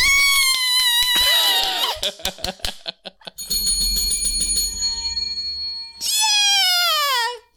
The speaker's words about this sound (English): You ready? I got my finger right above the ringer, the bell.